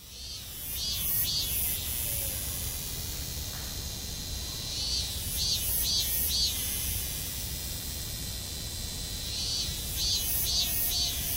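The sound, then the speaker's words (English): Shrill, buzzing cicada-like insects call at sunset in a park. They sound in loud, pulsing bursts that return every few seconds, over a constant noisy outdoor hiss, with no one talking. “These are some sort of mutant cicadas.”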